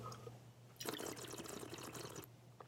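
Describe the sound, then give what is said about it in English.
Water bubbles and gurgles steadily for about a second and a half, like air blown through liquid in a glass to mimic smoking bong water, not an actual bong, with a low hum underneath. “I'm making fun of smoking bong water. I'm not actually smoking a bong.”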